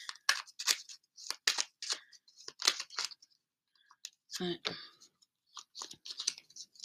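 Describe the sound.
Close, crisp flicking and snapping of cards being shuffled, a steady patter of quick papery clicks with one louder riffling burst partway through, and faint breathy voice sounds mixed in.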